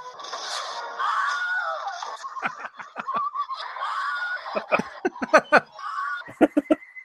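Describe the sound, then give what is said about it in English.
A string of Wilhelm screams, the stock movie yell, repeated over and over in quick succession, broken up by sharp percussive bursts like gunshots or impacts, loud and busy throughout. “This is the Wilhelm scream compilation.”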